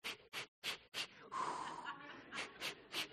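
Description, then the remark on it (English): A person breathes loudly: a run of quick, rhythmic breaths, one longer drawn-out exhale, then several more sharp breaths, with no talking. “Remember our breathing. So we breathe together, right?”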